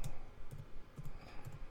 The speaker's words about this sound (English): I'm typing it in right now. And let's put Roland S. Martin.